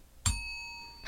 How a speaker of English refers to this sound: And I gotta add my bell. Hold on.